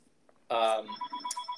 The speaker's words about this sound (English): Got another ring. Getting a phone call. That's me.